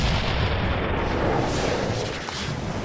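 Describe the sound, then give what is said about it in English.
A dense, continuous barrage of heavy cannon fire from the right-hand side cannons of a ship, booms overlapping into a loud rumbling roar with no pauses, filling the whole stretch. “he shouts for the crew to fire as they hit the cannons on the right-hand side, and the second ship is just blown with a barrage of cannon fire.”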